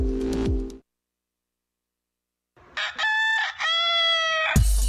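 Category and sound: bird, rooster crowing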